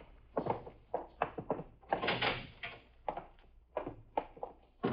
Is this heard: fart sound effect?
no